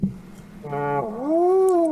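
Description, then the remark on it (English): A person vocally imitates a bull elk's lazy grunt: a low buzzy rumble, then a flat nasal drone, ending in a drawn-out moaning note that swells and sags over about a second. “Yeah, it's more of a grunt.”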